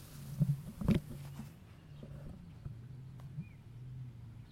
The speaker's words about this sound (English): I can hear a bloody sea-doo.